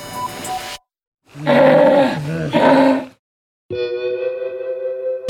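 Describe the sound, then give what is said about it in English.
A sea lion roars in loud, harsh, harmonic bursts: a short rough call, then two swelling roars back to back, and finally a long, steady, droning bellow, separated by brief silences. “Sea lions are usually pretty chubby because they need a thick layer of fat to keep them warm in the cold water of the ocean.”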